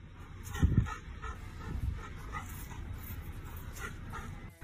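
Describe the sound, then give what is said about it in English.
A puppy whimpers and gives a few short yips while imitating a police officer doing push-ups, the sharpest cries near the start and softer whines following over a constant low background rumble. “Because the puppy's just imitating him as he's doing push-ups.”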